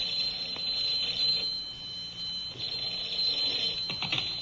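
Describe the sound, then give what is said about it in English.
A telephone rings in the Nelson family's home just past noon, with a shrill, high-pitched, steady trill that carries on without pause for several seconds, with no one speaking. “And just in time to answer the phone, too.”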